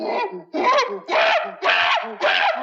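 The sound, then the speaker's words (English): An angry monkey sound effect, played as the cue for a wrong answer in a game: five loud, harsh screeching bursts in quick succession, each about half a second long, chattering and shrieking with no talking over them. “Very angry so monkey. So mad at you.”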